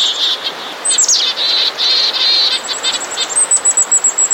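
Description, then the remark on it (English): Birds of many species call together in a busy, agitated mobbing chorus of alarm calls: high, harsh chirps and buzzy notes, ending in a rapid series of sharp repeated calls, loud with no talking. “many other species came in to help with the mobbing.”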